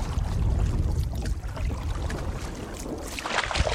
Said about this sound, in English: as we take a canoe ride up the river.